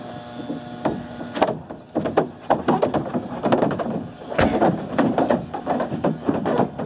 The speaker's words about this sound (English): Sadly, there's no water in the slide. You can hear the cow's hooves clattering along, and you don't get to see the cow actually make it to the bottom of the slide and kasploosh into the water.